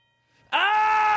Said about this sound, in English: The way that I answer, ring the doorbell. Ring the doorbell. I'll show you how I do it at my house.